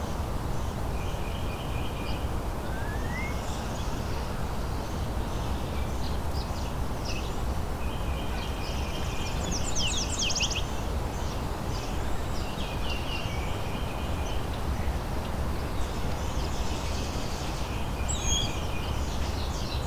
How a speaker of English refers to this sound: It's a bay-breasted warbler coming close to me here, but not singing.